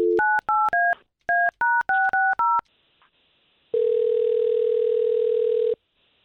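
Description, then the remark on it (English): A quick run of touch-tone dialing beeps in two bursts as a phone number is dialed, followed after a short pause by a single long, steady telephone ring tone, loud with no one talking. “We'll try to get him on the line, talk to him for a little bit, and see if we can't bring you in, okay?”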